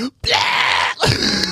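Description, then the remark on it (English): A person bleats like a goat in two loud, strained, wavering bursts separated by a brief gap, the voice harsh and nasal. “We got land bleats in here.”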